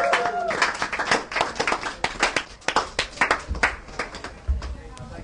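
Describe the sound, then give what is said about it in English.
A concert audience applauds a band after its performance, many hands clapping in a dense, continuous patter for several seconds, lively, with faint voices mixed into the noise. “One more big round of applause”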